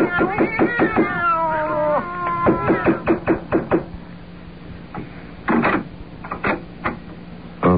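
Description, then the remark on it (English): Several cats meow and yowl loudly at once in a rising, overlapping chorus from behind an apartment door, then the cries give way to scattered knocks and clattering sounds. “You didn't hear the sound of cats just now?”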